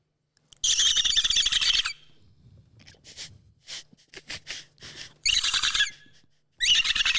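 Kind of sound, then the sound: vocal imitation, person imitating dolphin calls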